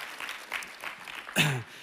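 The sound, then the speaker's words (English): A crowd claps steadily, a soft wash of applause cheering on the sound team, and one voice lets out a short, falling cheer near the end. “Come on, can we just cheer the sound team on as they try to work with me today?”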